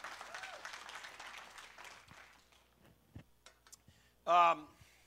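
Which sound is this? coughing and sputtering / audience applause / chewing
audience applause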